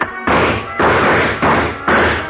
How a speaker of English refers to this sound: I knocked over a chair to give him something to shoot at.